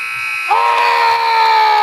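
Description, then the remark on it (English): A loud, sustained electronic buzzer blares steadily for well over a second, its harsh tone holding level from start to finish, as the clock runs out right before halftime of a basketball game. “Buzzer beater in our inaugural broadcast.”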